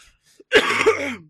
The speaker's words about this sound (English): Sorry to cough again.